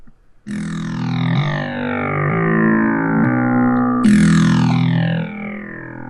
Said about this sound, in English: Think about this. It is nothing but plain sine waves, crisp, you know, kind of nice little woo sound being modified by other ones until you get this kind of jarring abrasiveness.